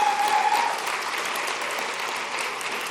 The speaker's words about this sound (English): Let's give him a round of applause for that.